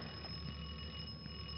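A doorbell rings in one continuous, steady electric tone that holds for the whole moment, fairly quiet, with no voices over it, as someone is at the door.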